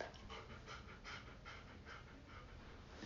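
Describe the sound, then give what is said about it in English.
A female dog pants steadily in the background in quick, rhythmic breaths, fairly loud, with no one talking over it for the few seconds it lasts. “I feel like people will definitely hear her panting in the back.”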